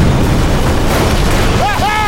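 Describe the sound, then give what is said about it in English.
A loud, deep cannon blast on the lowest gun deck of a ship, blowing a cannon completely out the side, rolls into a sustained rumbling roar that fills the scene, with a few high whistling tones rising over it near the end. “They came out from under the stern galley onto the starboard side and saw an explosion blow one of the cannons on the lowest gun deck completely out the side.”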